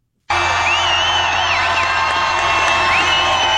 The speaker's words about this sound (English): That's just crowd noise.